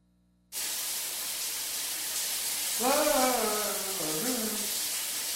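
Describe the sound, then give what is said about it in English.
A shower's running water starts abruptly and pours as a steady, loud hiss of spray that stays even to the end, with a voice briefly speaking over it midway. “Honey, the water just stopped in here.”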